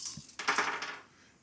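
A short clatter of dice tumbling and tapping across a table, a quick burst of bright clicks that settles within about a second.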